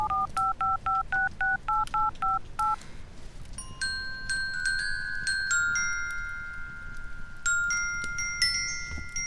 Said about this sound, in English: Watson, why is my phone ringing?